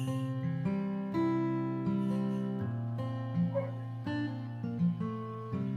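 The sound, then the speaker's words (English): Dogs in a house bark and whine almost continuously over several seconds, a loud, tonal, yelping chorus with no one talking over it. “Forgive the dogs in the background.”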